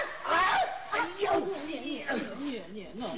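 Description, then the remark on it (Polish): A person imitates a headless dog with a string of barks and yips, then wavering whiny howls, voiced fairly loud with no real dog present. “Nie rób tego psa, zrób lepiej te miotły.”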